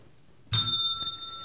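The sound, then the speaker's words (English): A single bright strike of a small bell rings out clear, its high metallic tones lingering and slowly fading after the sharp hit, with no talking. “Oh, yeah, actually, ring the bell.”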